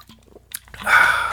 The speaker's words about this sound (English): I'm actually losing my voice a little bit here because I'm doing all of the talking, and I'm not taking any time to stop and drink some water. So I'm going to do that right here.